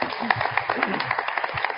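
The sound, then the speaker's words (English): A debate audience applauds the candidates, dense, steady clapping, many overlapping claps forming a continuous crackling wash at an even, moderate loudness throughout. “So I'd like to ask the audience to join in some applause for the candidates.”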